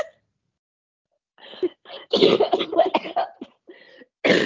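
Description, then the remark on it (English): A person coughs in a loud flurry of harsh bursts after a short silence, pausing briefly before one more forceful cough at the end. “If you have an aversion to people coughing, just skip this one.”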